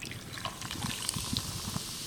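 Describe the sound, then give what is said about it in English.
AHA sparkling water, lime and watermelon flavor, pours steadily over ice, a continuous splashing, fizzy liquid sound dotted with small clinks and crackles, with no talking. “So, I'm gonna open this up. Ooh. There we go. Okay. So, we are pouring.”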